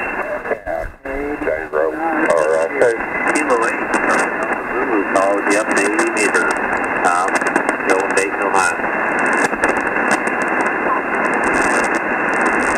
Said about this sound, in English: We got static down here, too.